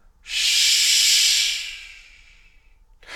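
A forceful exhale through pursed lips during a breathing exercise: one loud, steady hiss lasting about a second and a half before tapering away, with another breath starting just as it ends. No one speaks.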